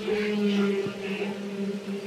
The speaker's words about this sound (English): It was an astonishing and haunting series of recordings of the vocalizations of whales, and it was a sensation.